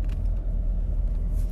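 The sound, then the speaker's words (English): Steady low-frequency rumble from inside a moving car as the driver looks for a parking spot at Casa Linda, a constant engine and road drone filling the cabin with no breaks or voices. “I am right now looking for a parking spot over here at Casa Linda.”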